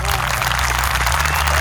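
A short burst of loud, dense applause: many hands clapping in a steady, crackling wash that holds at the same level for under two seconds, with a low hum underneath.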